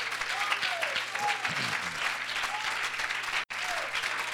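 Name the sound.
audience applauding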